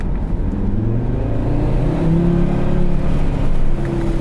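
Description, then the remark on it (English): A car engine revs under throttle in its standard drive mode, its pitch climbing and settling in a steady, loud drone with layered harmonic whine, with no talking. “But yeah, it makes a chirpy little fruity sound, particularly under warm-up.”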